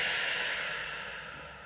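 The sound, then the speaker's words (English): An airy breath with a soft rushing hiss that slowly fades, like a long slow exhale, taken while holding the hands in a namaste. No talking, just the steady breath on its own. “I'm holding my hands into a namaste now as I'm breathing in and breathing out.”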